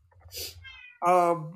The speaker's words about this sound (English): right when you said that, Bill was like, meow. You want to watch Puss in Boots, Bill?